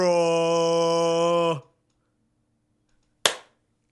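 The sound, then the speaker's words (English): A single sharp hand clap, loud and crisp with a quick decay, comes after a long, steady held tone and a moment of silence. “Hey, clap, okay? I did.”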